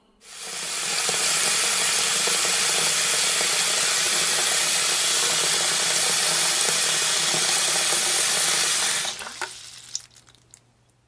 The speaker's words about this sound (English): That's right. I'm filling it up with water. Now it's a water balloon.